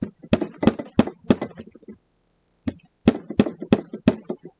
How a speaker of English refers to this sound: We were sitting there eating when there was a knocking at the door.